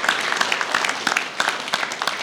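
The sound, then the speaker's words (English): An audience applauds in a steady round of dense, overlapping claps, a bright crackling wash with sharper individual hand claps popping out, lasting a couple of seconds with no voices over it. “A round of applause for her for being so brave.”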